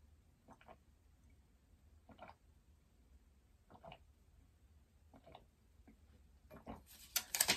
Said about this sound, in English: And drink the water.